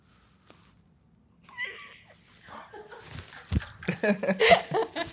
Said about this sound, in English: Somebody need to check on them dogs.